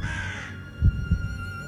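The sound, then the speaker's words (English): A crow gives harsh, raspy caws at the start and again right at the end, with two dull low thumps in the quieter gap between them. “Yet the crow was intent on finishing the job.”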